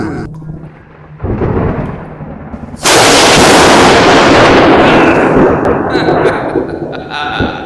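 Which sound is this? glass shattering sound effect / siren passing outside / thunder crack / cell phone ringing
thunder crack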